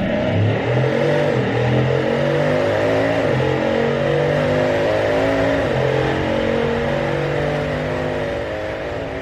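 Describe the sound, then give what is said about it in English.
A Bugatti Chiron's engine roars loud on a track during a lap, its pitch climbing repeatedly and dropping with each gear shift as the car accelerates hard, with no talking over it. “You choose the Chiron for the first lap of the day. Now, turn up the volume on your headphones.”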